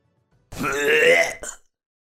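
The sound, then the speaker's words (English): A single loud belch voiced by a person imitating a frog-like creature, a long rumbling croak lasting about a second with a short gurgling tail, alone with no talking. “And he lets out another loud earthen belch, and a little leg comes back out.”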